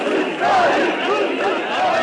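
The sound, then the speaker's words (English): A large crowd of protesters outside the hospital in Soma, Turkey, after a coal mine disaster, shouts and chants together against the government's work safety record in a dense, continuous roar, with voices rising and falling in waves, loud, filling the whole stretch without pause. “Today a big crowd gathered outside the hospital in Soma.”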